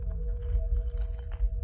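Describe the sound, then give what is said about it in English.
Metallic jangling of a set of keys methodically opening each of several locks outside a door, with small clinks and rattles over a low rumbling background, moderately loud, no voices. “The locks outside my door jangled, and I heard a set of keys methodically opening each at one.”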